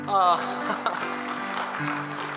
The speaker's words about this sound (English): Today is her birthday, and we can clap for her birthday.